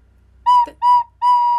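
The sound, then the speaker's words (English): A whistled attempt at Jingle Bells: three clear, sustained notes at nearly the same pitch with short gaps between them, the first ending in a brief wavering drop. No talking. “That was supposed to be Jingle Bells.”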